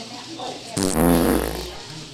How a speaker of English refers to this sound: What are you queuing up over there? Oh, the farts. The farts.